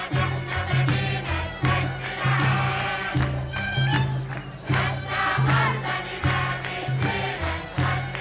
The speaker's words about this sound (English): In this song, you know, people start by cheering and ululations and clapping and this sort of very celebratory atmosphere.